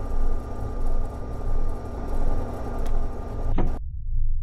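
A spaceship's bay doors slide open after the bay chamber has been depressurized to vacuum, with a steady, loud mechanical hum that swells and fades rhythmically, ending in a sharp clunk and sudden silence.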